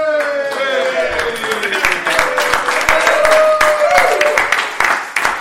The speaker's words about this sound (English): Settle down. We've got a huge crowd in here tonight. It's been quite boisterous.